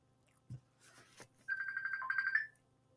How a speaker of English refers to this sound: I just got a phone call from John Pork, guys. Do I answer?